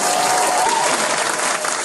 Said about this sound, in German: Applaus!